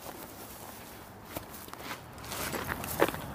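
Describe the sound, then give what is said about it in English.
Footsteps walking over gritty ground toward the opening of a tunnel in El Paso, Texas, 200 meters from Juarez, Mexico: a steady series of soft crunching steps with a few sharper scuffs, growing a little louder toward the end, with no talking. “So we're walking over here and we'll see the opening of the tunnel.”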